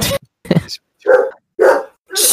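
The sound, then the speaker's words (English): A dog barks several times in loud bursts spaced about half a second apart, with a short bit of voice at the very start. “Life of the dog, cut that out.”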